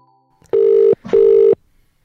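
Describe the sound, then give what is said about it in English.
A telephone ringing tone for a call to a home in rural Galloway sounds twice in quick succession, two steady, loud electronic buzzes of equal length separated by a short pause, with no voices. “Here she is on the phone from home in rural Galloway to tell us about the view where she is.”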